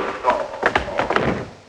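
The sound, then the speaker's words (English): A punch lands as a guard is slugged: a few dull, thudding blows in quick, uneven succession, blunt and mid-pitched, mixed with muffled vocal sounds and a brief scuffle. “Now, hey, slug him, right?”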